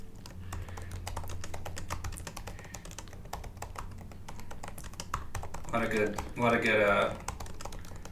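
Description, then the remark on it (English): Rapid, irregular clicking of keys on a computer keyboard continues steadily throughout, with a brief burst of louder, busier sound near the end and a low hum underneath. “This is great recording, just a lot of tippy-tap typing.”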